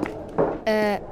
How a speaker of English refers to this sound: Gesundheit.